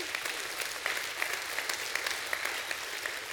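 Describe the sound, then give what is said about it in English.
An audience gives God a hand clap of praise, a dense, steady wash of many hands with a few sharper claps standing out at a regular beat, sustained throughout with no voices. “Somebody say amen and give God a great hand clap of praise.”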